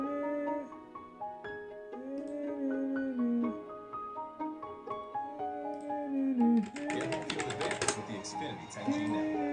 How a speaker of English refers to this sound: So I'm just clicking away, click, click, click, clicking away.